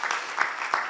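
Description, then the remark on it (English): Steady audience applause at a service for the people who work behind the scenes, a dense wash of many hands clapping at an even, moderate level with a few sharper individual claps standing out. “Just let's give everyone a round of applause.”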